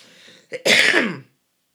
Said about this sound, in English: Sorry for coughing, guys.